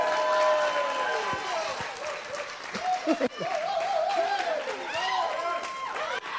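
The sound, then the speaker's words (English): A crowd applauds steadily for several seconds, a dense wash of clapping with voices whooping and cheering over it, fairly loud throughout. “Give me a round of applause for that.”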